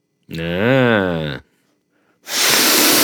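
A short hummed vocal sound, a brief pause, then a loud nasal sniff: a breathy rush of air drawn in through the nose for just under a second.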